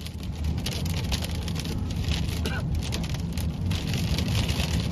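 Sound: rain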